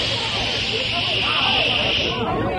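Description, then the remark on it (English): A voice imitates a hissing sound like a Fourth of July rocket: one loud, steady, breathy hiss held for about two and a half seconds, with a faint warbling tone running through it before it tapers slightly. “First off, I heard something. Okay, so what did you hear? A hissing sound, like this.”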